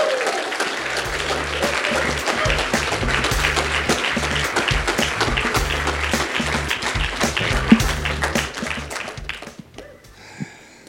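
A standing audience claps steadily for about nine seconds to welcome a speaker, a dense, loud wash of applause over a rhythmic low bass line, then it thins out and fades to a few scattered claps.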